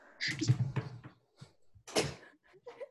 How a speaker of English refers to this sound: I think I hear someone knocking. Hold on. I got to do my job.